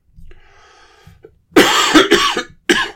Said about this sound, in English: Sorry about the cough. I can't get rid of it.